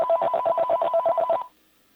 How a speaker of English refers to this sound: Yeah, I keep hearing the phone ring. I think we have callers,